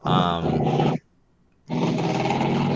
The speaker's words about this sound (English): Man, we got a motorcycle going on out there.